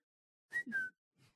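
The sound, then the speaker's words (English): A person imitates an owl with two quick whistled hoots, the second gliding slightly downward, followed after a pause by a brief, faint breathy sound. “I was an owl.”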